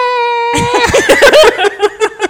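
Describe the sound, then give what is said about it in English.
A movie creature's cry: a steady, piercing high-pitched whine that erupts into loud, choppy, warbling yelps and squeals, pulsing rapidly before breaking into short separate bursts. “And it like starts like that growl, but then it gets like really high pitched.”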